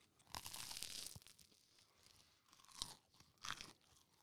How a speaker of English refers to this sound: The crunch. You hear that crunch?